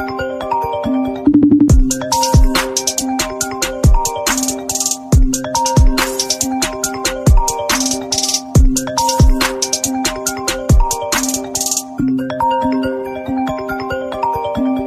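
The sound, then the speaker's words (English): A looping electronic phone-alarm melody plays loudly and steadily, bright beeping tones repeating over a thumping beat, with no voices. “But there are alarms going off all the time.”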